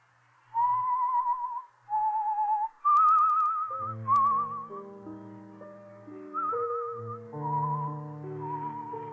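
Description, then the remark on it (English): Someone whistles a wavering, vibrato-rich melody in short phrases, clear, and a soft sustained instrumental accompaniment joins partway through. No one speaks. “You whistle to yourself like that very often?”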